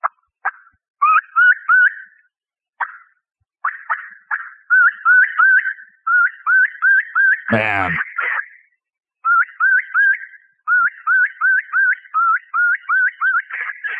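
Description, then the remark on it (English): A turkey kiki run, the call a lost turkey makes to get back with the flock, imitated on a call: series of high, whistled chirping notes in quick rhythmic bursts, pausing and resuming, with a brief exclamation from a man partway through. “This will be a kiki run. This is a call of a turkey when it's lost, trying to get back with the flock.”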